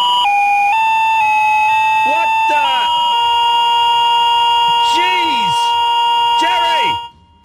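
A phone abruptly blares a psychedelic rock tune, loud warbling electronic tones stepping through a melody with swooping, siren-like glides, playing for about seven seconds before cutting off.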